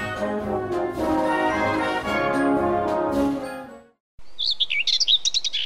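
A sustained, rich musical chord fades out, then after a brief silence birds outside chirp in quick, bright, repeated tweets, clear, with no talking.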